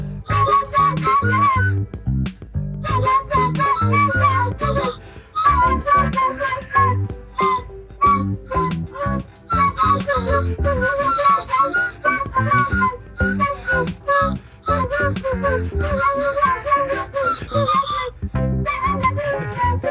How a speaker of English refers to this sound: Brought the candy whistle.